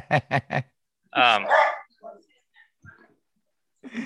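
A dog gives three quick, sharp barks in a rapid burst, followed by a longer whining yelp and a few faint, scattered sounds before going quiet.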